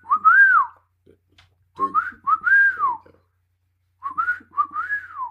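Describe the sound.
A person whistles three times, each a clear, swooping tone rising and falling in pitch, with short pauses between them and no talking.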